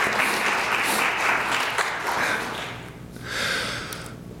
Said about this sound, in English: Let's give each other a round of applause because we all deserve that.